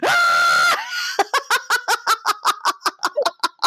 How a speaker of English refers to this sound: I had something inside of me that needed to scream. And … just goes, well, I don't know if Hank would approve of that, but well, I'll give it a try, and just screams.